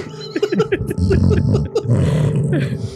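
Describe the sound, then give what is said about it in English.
A person fakes snoring with rough, growly throat rasps in a rapid, uneven series, loud and guttural like an animal's snarl, with no clear words. “So you're clearly fake snoring.”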